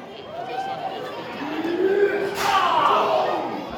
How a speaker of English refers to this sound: And a chop right across the chest.